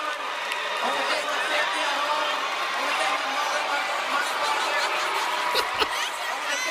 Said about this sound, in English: And now the boos start hardcore. Yeah.